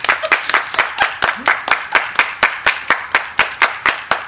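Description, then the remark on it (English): A crowd claps their hands together in a steady, even rhythm, about four sharp, loud claps per second, keeping perfect time with no voices over it. “So, freeze. Everybody clap your hands.”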